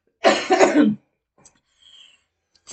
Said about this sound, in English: I got a cough, sorry.